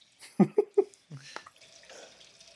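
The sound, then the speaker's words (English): Red wine glugs from a bottle in three quick bursts, then streams steadily into a glass with a faint rising pitch as it fills. “Here's a real big pour for you.”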